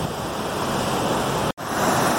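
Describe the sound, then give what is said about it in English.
A waterfall fed by snow melt crashes down into a creek, where the water boils constantly. It makes a loud, unbroken roar of rushing water, with no voices and one split-second dropout. “You know, this is not one of your famous giant waterfalls, but this is pretty spectacular.”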